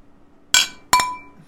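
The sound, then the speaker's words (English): Two bright glass clinks close together, sharp ringing taps with a short shimmering decay, as glasses of IPA beer are touched in a toast, with no talking. “Nice clink.”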